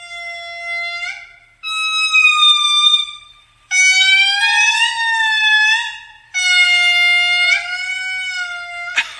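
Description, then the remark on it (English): Lemur songs recorded in Madagascar: four loud, drawn-out wailing calls, each sliding in pitch and rich in overtones, separated by brief pauses. Siren-like, with no talking. “These recordings are from scientists who collected the songs from lemurs in Madagascar over the course of 12 years.”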